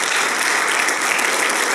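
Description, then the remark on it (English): An audience claps steadily and loudly at Faith Bible College to welcome a guest pastor from Kansas: a dense wash of many hands with no breaks or speech, sustained throughout the short stretch. “Yeah, give him a Faith Bible College welcome.”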